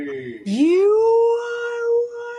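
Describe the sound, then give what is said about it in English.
A person stretches out a long, wavering vocal moan, sliding up in pitch and then holding a steady drawn-out tone, imitating Dory talking to the whales in Finding Nemo; fairly loud, with no other sounds. “You know, like when on Finding Nemo when Dory was trying to talk to the whales?”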